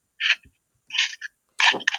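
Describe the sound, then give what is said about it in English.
Three sharp, breathy sneezes in quick succession, each a short burst of hissing noise, with the last one the loudest and fullest. No one talks over them. “Bless you.”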